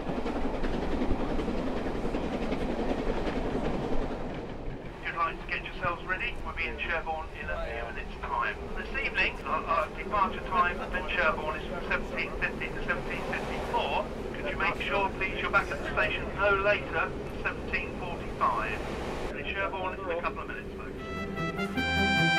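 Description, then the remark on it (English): A Steam Dreams steam train runs steadily along the rails towards Sherborne, with a continuous heavy rumble and a rhythmic clatter of wheels over the track throughout. “The majority of the passengers left the train at Sherborne, where they went to a carol service in the Abbey.”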